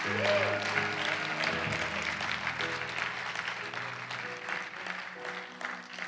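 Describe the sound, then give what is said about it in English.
An audience at Peckville Assembly claps steadily for several seconds, giving God a clap and a shout of praise; the dense applause is mixed with scattered shouts and cheers, sustained at an even, fairly loud level throughout. “Let's just take 10 seconds and give God a mighty clap and a shout of praise.”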